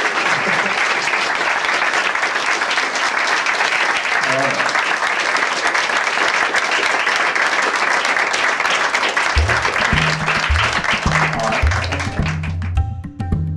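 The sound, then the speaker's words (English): A live audience applauds steadily and loudly, a dense wash of clapping that holds for over ten seconds, with a few low voice-like tones and murmurs surfacing toward the end as it thins out. “Nothing like a live audience with applause as you're doing a podcast.”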